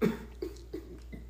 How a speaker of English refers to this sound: But I feel like I could taste the copper in my throat from like the blood. Like I feel like I cough and there's blood just chilling in my chest right now, and it doesn't feel good.